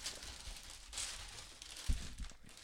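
Dry crinkling of Peanuts wrapping paper as a gift, a Charlie Brown Christmas special green vinyl LP, is torn open in a recording studio, with bursts of rustling and a couple of louder rips and thumps toward the end, no voices.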